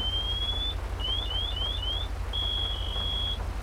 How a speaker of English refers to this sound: Medic, turn your pass alarm off. Medic, turn your pass alarm off, dude.